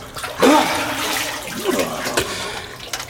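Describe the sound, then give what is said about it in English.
Warm water pours steadily for about two seconds, a splashing rush that tapers off, with a brief murmur of a voice underneath. “Some more warm water, General.”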